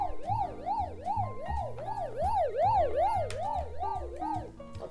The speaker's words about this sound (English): All right. So, what is our next segment? You ready? Hit the buzzer.